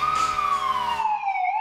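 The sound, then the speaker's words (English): A loud emergency vehicle siren wails in a steady, piercing tone that slowly slides downward in pitch, in a snowy setting, with rumbling traffic noise underneath at first that drops away, leaving the siren alone. “We all nodded in approval and sat in the snow as sirens filled the air.”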